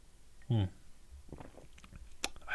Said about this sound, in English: It has a very, like, acidic smell to it, in the same way that, like, if you put your nose up to the bottle of lemon or lime juice, it has that, like, oh yeah, this has some acidity to it. Let's get in for a sip.